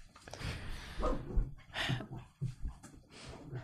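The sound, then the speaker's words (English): A wet dog, soaked from walking in the rain, frantically rubs and thrashes about trying to dry herself off, with bursts of scuffling and rustling broken by snorts and heavy huffing breaths, the scrambling coming in quick, uneven spurts. “Our dog is literally going insane right now.”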